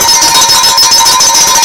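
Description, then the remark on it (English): A bell rings steadily and loudly for under two seconds, with bright, sustained metallic tones and a rapid, pulsing shimmer throughout. No voices are heard. “You get the bell.”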